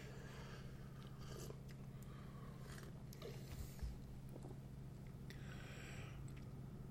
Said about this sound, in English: All right. Let's sip this.